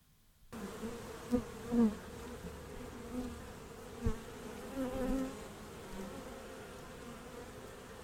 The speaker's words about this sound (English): So this is some bees, not the relocated bees, having a chance to express their own opinions on the story. This is a statement from some Sydney-based bees.